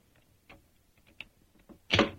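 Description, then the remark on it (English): A few faint metallic clicks and scrapes of a skeleton key working in the lock of a locked door, then a louder clunk as the door unlocks, with no one talking. “Is the door locked? Yes, but I think a skeleton key will do the trick.”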